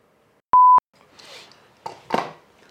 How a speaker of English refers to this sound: Oh, hang on, stopwatch.